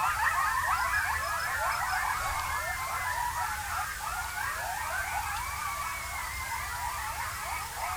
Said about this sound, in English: All right, here are now some coyotes, and this was recorded at the Mojave National Preserve in California.